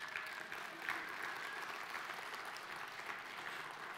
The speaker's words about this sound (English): And I was told this morning, 7 people at least prayed to receive Jesus yesterday. Go ahead and clap.